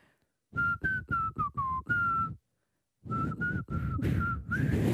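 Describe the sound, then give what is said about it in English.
Someone whistles a short tune in breathy, choppy bursts, the pitch wobbling between notes, with lots of airy hiss and a brief pause midway before more uneven whistled notes. “Yeah, you can't whistle. You can't whistle.”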